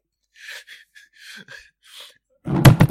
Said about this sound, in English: Oops, sorry, I knocked over my mic. Make sure I'm still recording and everything properly.